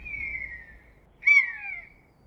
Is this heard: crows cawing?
yes